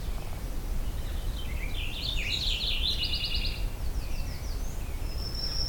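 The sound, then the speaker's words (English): A purple finch sings a rapid, warbling song that rises and falls in a bright jumble of notes on an overcast morning during the dawn chorus, over steady low background rumble, with a few thinner chirps following. “Purple finch.”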